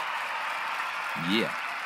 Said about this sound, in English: And this applause is for you.